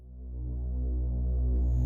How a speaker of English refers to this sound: There are lights above. They hum with an unpleasant sound and a yellow light.